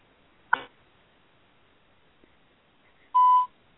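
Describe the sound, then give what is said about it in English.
A brief crackly burst, then after a pause a single steady electronic beep of about a third of a second, the tone of a phone call's voicemail line before recording. No one speaks. “now we're getting a ringtone. Please leave your message for Joel Manzer.”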